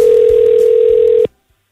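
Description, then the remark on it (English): A telephone ringing tone on a call placed to an auto glass shop: one steady, loud electronic hum at a low pitch, holding for just over a second before cutting off abruptly into silence. “Here is my call to Dean.”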